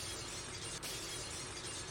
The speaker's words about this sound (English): But she broke all of the windows throughout her school. Just imagine going through your own school, breaking the windows with a bat.